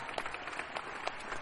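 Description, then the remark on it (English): A crowd applauding, steady dense clapping that fills the whole moment with a bright crackling wash and a few sharper claps poking through. No one speaks over it. “To see him go from being a music producer, an MC, to now a filmmaker, and to watch how many people he's employed and how many careers he started, man, I just want to give him a big round of applause and represent my brother.”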